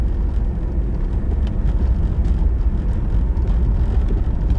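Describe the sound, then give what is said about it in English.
A steady, loud low rumble of a vehicle engine and road noise, constant throughout, from a car driving behind, with no talking. “There's a car behind us.”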